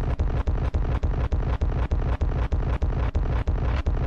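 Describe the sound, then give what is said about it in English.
Loud explosion sound effects, set off by pressing an explosion button about 18 times, fire rapidly one after another, about three per second, blending into a dense roaring rumble with only brief gaps between blasts. No voices. “Am I not supposed to press this explosion button 18 times”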